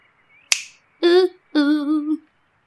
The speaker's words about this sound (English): Come on, come on. Snap your fingers.